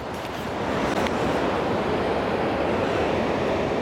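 Ocean surf washes onto the shore beside a promenade under a blue sky, a steady, loud, hissing roar that swells slightly after the first half second and then holds evenly, with no voices.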